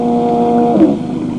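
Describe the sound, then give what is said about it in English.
A motorboat engine on a foggy river hums steadily as the boat eases toward the shore, then sputters briefly and cuts out partway through, leaving only a soft background hiss. “As I was easing my boat toward what I thought was the shore, the motor quit.”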